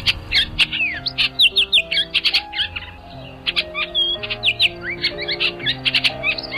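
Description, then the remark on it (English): A male Bullock's oriole (Icterus bullocki) sings a quick run of sweet, slightly harsh whistled notes in two bursts with a brief pause between, clear over soft instrumental music. “The female is the more prolific singer, although the male's song is described as being sweeter, similar to that of the Baltimore oriole, but faster and a bit more harsh, like this.”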